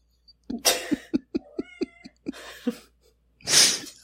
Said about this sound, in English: She was the podcast cat. She was pissed I was gone. She was at the door screaming.